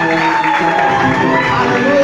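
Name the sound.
audience clapping and cheering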